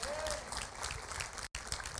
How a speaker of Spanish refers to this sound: Amén, un aplauso a la hermana que ya se siente un poquito más.